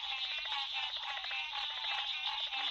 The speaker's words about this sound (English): We leave you this week listening to the symphony in a southern swamp. A variety of frogs are singing. They're the nasal tones of green tree frogs and the clicking tones of cricket frogs. And leopard frogs add their chatters as percussion.